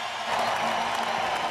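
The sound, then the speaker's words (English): A St. Louis arena crowd, on their feet, cheers and applauds after Vladdy Sobotka ties the game at two. A dense, steady roar of clapping and shouting stays loud for the whole moment, with no voice standing out above it. “Great grin on his face as he scooted by the player's bench here, and the fans are on their feet.”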